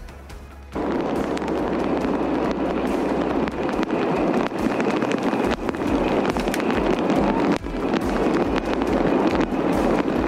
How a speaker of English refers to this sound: A relentless and powerful storm slamming into California and leading to dramatic rescues. The threat is not over.